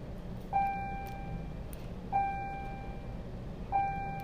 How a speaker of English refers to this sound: Sorry, that was the bell.